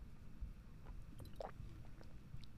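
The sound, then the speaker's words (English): Someone takes a quiet sip of water, with a soft wet slurp and gulp midway through and faint mouth sounds over a low background hum. “And I need another sip of water, so everyone take a water break.”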